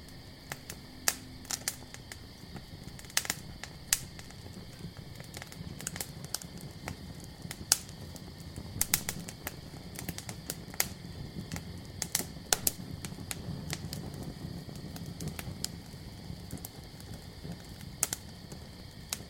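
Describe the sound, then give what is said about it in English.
A campfire crackles steadily, with sharp irregular pops and snaps over a soft low rumble, while crickets chirp constantly in the background. No voices. “Your breathing is slow and deep as you begin to drift off to sleep to the sounds of crickets singing and your fire crackling away.”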